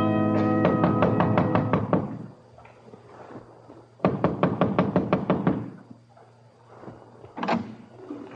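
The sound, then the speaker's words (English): Loud, rapid knocking on a door comes in two hurried bursts of about eight or nine raps each, separated by a pause, followed by a single heavier knock near the end. “Only certain kinds of people knock like that.”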